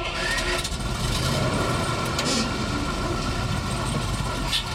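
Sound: bus engine idling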